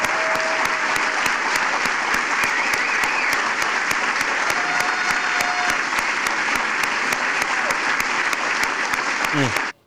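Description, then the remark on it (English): A large audience claps steadily and loudly for about ten seconds at an event where Joe Biden is present, a dense wash of hand claps with faint crowd murmur and cheers underneath, ending abruptly. “Joe Biden's looking around like, who are they clapping for?”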